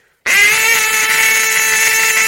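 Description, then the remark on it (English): A turkey hen long call blown on a game call as loud as possible while holding pressure, drawn out as one loud, raspy, buzzing note that holds a steady pitch for about two seconds, with no talking. “So you want to be able just to pick a call up and make your loudest hen long.”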